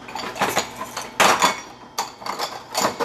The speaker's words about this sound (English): Gotta wash some dishes before he comes.